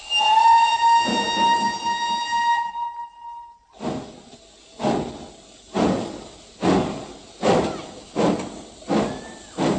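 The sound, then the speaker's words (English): A steam locomotive that hauls passengers, general goods and slate sounds a long, shrill whistle, then starts chuffing in loud, steady bursts about once a second as it gets under way. “Locomotive can haul longer trains, taking passengers and general goods as well as slate.”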